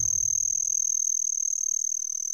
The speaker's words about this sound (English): Let's turn our attention to the cool sounds that some insects can make.